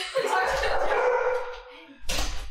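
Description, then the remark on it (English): A dog whines in a long, drawn-out whimper, then lets out a short, sharp bark after a brief pause. “the basketball and the I want to say dogs. I'm looking at the dog right now.”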